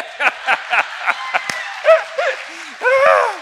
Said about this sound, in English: Our teens have the goofiest youth pastor ever. Amen. Oh, he got applause. I should never have done that. That's not good.